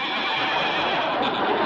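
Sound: horse neighing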